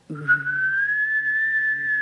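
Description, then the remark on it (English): A person hums a low steady tone while whistling a high, slowly rising pitch at the same time, producing an eerie, warbling UFO-like sound held for about two seconds, fairly loud. “Like, you hum and you whistle at the same time.”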